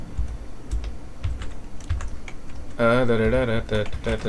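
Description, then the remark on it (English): Quick, irregular clacking of fingers typing on a computer keyboard for research, moderately loud, carries on for a few seconds before a person starts talking over the last few keystrokes. “These lulls in speaking or typing for research.”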